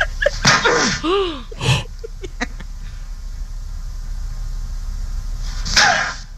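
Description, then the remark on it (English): A woman slaps a young woman in the face twice: two sharp slaps land about a second apart, mixed with breathy vocal cries, then a quieter stretch before one more burst of noise near the end. “Slaps her twice.”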